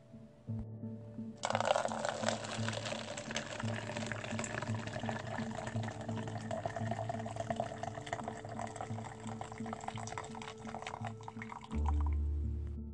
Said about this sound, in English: There's a bit of comedy when I pour the coffee into this cup here because I stop partway through. This is a confession. I stop partway up because this cup of coffee is much larger than I think I want to let on